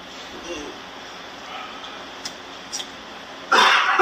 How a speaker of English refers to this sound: Oh, the cough burns.